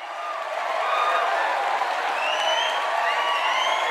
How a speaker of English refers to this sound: Everyone would be excited, some even clapping loudly in anticipation before Steve walks up on stage. Immediately, the entire room began clapping and whistling away.